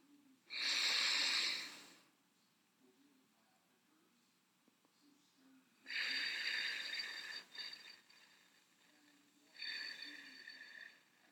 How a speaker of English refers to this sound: Enjoying every moment of that soothing exhaling.